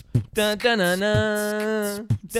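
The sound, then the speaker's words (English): A voice imitates the melody a washer and dryer plays when the washer is done, a loud, sustained sung tone that bends slightly, with a few thumping beat hits at the start, middle and end. “This is what it makes when the washer's done.”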